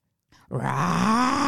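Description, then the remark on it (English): A person lets out a loud, sustained throaty roar in imitation of a tiger, the Tyson Elementary school mascot, starting with a short breathy rasp and swelling into a steady guttural growl. “You sounded like a real tiger!”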